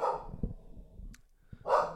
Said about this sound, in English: Somebody put that dog in a Pokeball. You're not working with me for the betterment of our society.